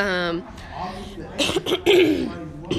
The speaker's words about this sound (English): excuse me, goodness. Yeah. I'm sitting here eating a sandwich, so I'm like coughing. The roast beef was good.